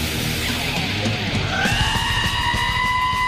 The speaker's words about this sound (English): there is a YouTube clip of a goat screaming to …